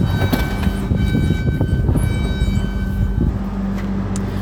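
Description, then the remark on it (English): A big walk-in freezer in building D2 hums steadily, a constant low drone with faint higher whining tones running through it, fairly loud and unchanging, with a few soft rattles and no voices. “You can hear the big walk-in freezer humming away there.”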